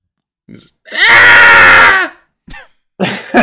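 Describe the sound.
A person lets out a loud, raspy, guttural yell lasting about a second, mimicking a monstrous ghoul, framed by short breathy vocal noises before and after.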